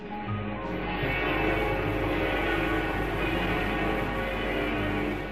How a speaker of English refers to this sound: Great bells of Notre Dame Cathedral.